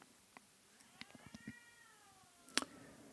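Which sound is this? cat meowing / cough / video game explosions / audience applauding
cat meowing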